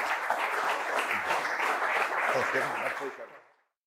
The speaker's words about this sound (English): Round of applause